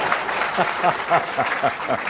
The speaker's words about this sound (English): In fact, I thought that was a very good answer. Actually. It was a very good answer, yeah. I thought it deserved a round of applause, actually.